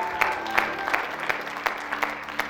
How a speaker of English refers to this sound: Let's give the Lord a clap offering this morning. Thank you, Lord.